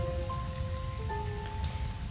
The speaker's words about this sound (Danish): … ruder lidt med løgene, der steger.